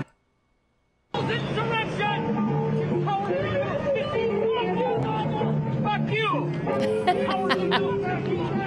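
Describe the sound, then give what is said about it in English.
A crowd of people shouting and yelling "traitors" and insults over one another, a loud, continuous mass of overlapping voices with some raised, strained cries breaking through, starting abruptly after a second of silence. “Those are normal people screaming out, traitors, F you.”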